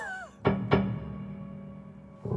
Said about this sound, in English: Yeah, I'm dampening the string, but I have the sustain on, so when the hammer strikes it, it makes that wonderful sound.